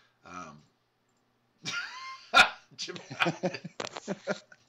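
A dog gives a short, sharp bark, then a longer yelping whine after a pause, followed by a run of choppy, voice-like sounds, all moderately loud.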